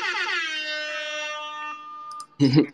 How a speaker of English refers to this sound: Can I get a pew, pew, pew? Yes, let me get the humble beginnings air horn queued up.